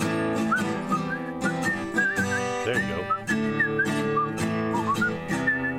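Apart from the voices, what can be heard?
person whistling a tune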